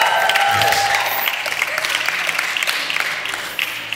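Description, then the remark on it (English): A crowd, including people from the UK in the room, claps and cheers steadily, a dense wash of applause with excited shouts and whoops rising over it, loud throughout and easing slightly near the end. “Wow, can we just, there's some UK people getting excited here.”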